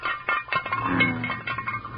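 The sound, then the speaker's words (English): Hollow clinks and rattles of chicken-leg bones knocking about in a metal frying pan, a quick irregular run of bright clatters with no voices. “Bones sure sound hollow in that frying pan.”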